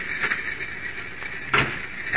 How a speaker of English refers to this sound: What was that? That's the wind. The door's open and closing.